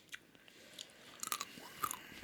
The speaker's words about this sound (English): Will you stop chewing pumpkin seeds?